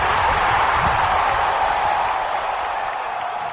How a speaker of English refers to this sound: You know exactly when to play the crowd noise.